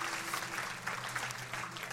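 An audience claps for Jesus together in a steady, dense wash of applause, many hands at once with no voices standing out, holding an even level throughout.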